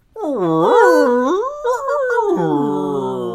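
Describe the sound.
A person imitates a whale call with a long, wavering, moaning voice that swoops up and down in pitch for about three seconds, loud, with no talking.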